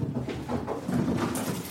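A dog rushes down a flight of stairs for a walk, its paws making a quick, uneven run of soft thumps and scrabbles, with no one talking.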